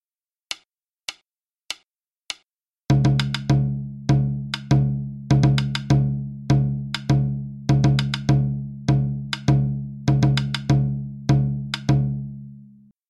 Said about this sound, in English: This isn't the most efficient way to play the part, but the students got a kick out of the visual effect of the stick swinging around to both sides of the tubano.